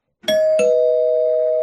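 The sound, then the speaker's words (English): A doorbell chimes a clear two-note ding-dong, loud, with the second tone ringing on and slowly fading. No voices are heard. “I want to spoil a little bit of the end, just a little bit though, but you should still ring the bell.”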